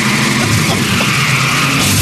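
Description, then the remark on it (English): A loud, steady car engine drone runs throughout, with a sustained high screech like tires skidding layered on top. No one speaks. “It's just car sounds while you're in a car.”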